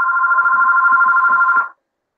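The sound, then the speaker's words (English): A phone rings for an incoming call with a steady electronic tone lasting under two seconds, loud, then cuts off abruptly as the call is cancelled, with faint low thumps underneath. “I get random calls. Yeah. Anyway, so that will keep ringing probably.”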